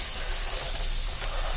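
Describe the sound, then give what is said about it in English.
A steady aerosol can of bug spray hisses without a break for about a second and a half, bright and airy, holding an even loudness with no voices over it. “It's like an aerosol. You spray in your little cubicle.”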